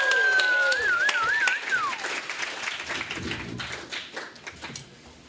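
An audience at the Quiz Box comedy show applauds a comedian panelist coming to the stage, with a dense, steady patter of clapping while a shrill wavering whistle rises above it early on; the clapping gradually thins and quiets toward the end.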